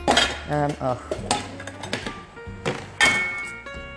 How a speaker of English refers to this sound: Okay. There we go, more dishes.